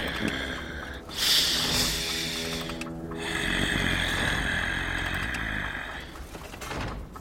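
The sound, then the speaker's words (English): A voice imitates loud, heavy breathing: a few long, rasping breaths with a hissy, snore-like texture, each drawn out over a couple of seconds with brief pauses between. “I hear some very heavy.”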